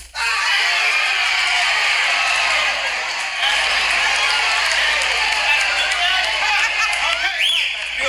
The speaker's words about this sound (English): we're going to try something else, crowd. It's 1927. Lindbergh has just landed in Paris. You are excited and thrilled.